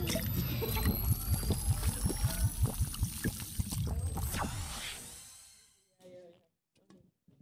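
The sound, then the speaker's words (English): Steady gulping as people chug drinks, rapid rhythmic swallows with liquid sloshing for about four seconds, then a sudden stop followed by a few faint breaths and small sounds. “3, 2, 1, oh. Chug.”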